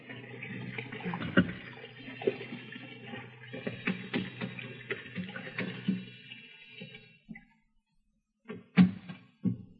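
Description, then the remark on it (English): Hot water gushes steadily from a bathroom sink tap for about seven seconds, splashing and gurgling, then shuts off, followed by a couple of brief clunks in the quiet. “There's the sink. Some hot water.”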